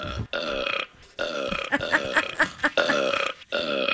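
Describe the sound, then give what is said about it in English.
A string of long, loud, gurgling burps from the cartoon character Barney plays back to back, each one rough and throaty with brief gaps between, repeating like a loop. “That is a loop of Barney's burps.”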